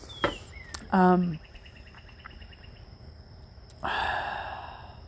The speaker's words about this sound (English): I'm sitting on my porch. It is really nice. You probably hear the birds. Enjoy that.